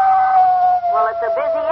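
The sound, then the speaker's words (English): A long, steady howl of a male timber wolf holds one high pitch, loud, while a voice starts talking over it partway through. “Now, that was the male, or the buck wolf.”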